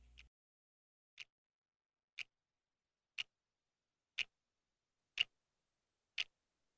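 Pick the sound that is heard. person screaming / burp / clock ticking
clock ticking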